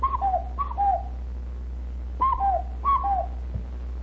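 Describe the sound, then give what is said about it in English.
A whistled imitation of a cuckoo call: clear two-note descending "cuck-oo" phrases, four of them in two pairs separated by a short pause, over a steady low hum. “I said, No, make that cuckoo again.”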